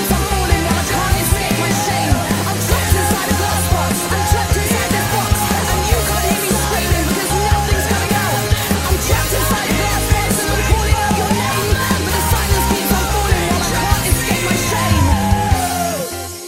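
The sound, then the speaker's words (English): Dense, loud rock-style music plays throughout, with forceful, shouted vocals delivered in an aggressive, rap-like cadence over a driving full-band chorus at a steady, intense level. “You kind of get rappy here with this part, and it really sounds angsty and angry.”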